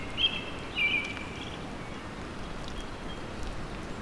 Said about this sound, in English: American robin is singing.